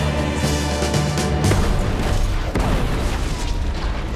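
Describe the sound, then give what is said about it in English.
A huge, sustained explosion after a head-on collision between an old Buick and a military convoy roars loudly for several seconds, with a dense low rumble, crackling debris and a sharp bang midway through. No one speaks. “And then just a huge explosion, which I've seen a head-on collision before, and that just doesn't happen.”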